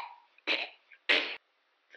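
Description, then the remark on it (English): Two loud, wet retching bursts of a creature's projectile vomiting, each about a third of a second, separated by a short pause, with a faint gurgle trailing at the end and no talking. “I told you to look out for the projectile vomiting, kid.”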